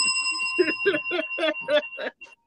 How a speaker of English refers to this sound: I'm getting my bell. Hold on.